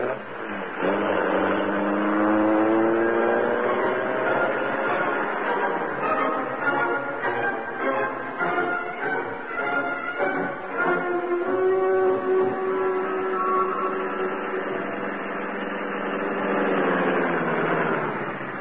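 The loud engine of a huge car, the Black Beauty, roars and revs steadily for the whole stretch, its pitch rising and shifting as the car leaps forward and rushes out into the night. No one speaks.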